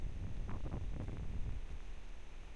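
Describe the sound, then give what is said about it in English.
Steady wind buffets the microphone, producing a continuous low rumble with gusty flutters and faint rustling, with no voices throughout. “It's really windy today.”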